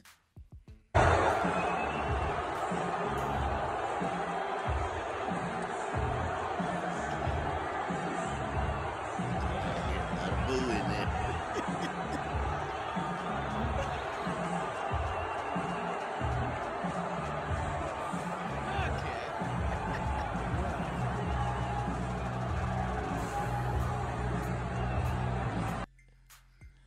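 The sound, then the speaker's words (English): A large crowd at a UFC match in Madison Square Garden on Saturday night roars steadily for about twenty-five seconds as the president and his sons, Donald Jr. and Eric, enter the arena: a dense wash of voices, sustained booing mixed with scattered cheers, loud and continuous with echoing arena ambience. “He was met with a mix of boos and some cheers, too.”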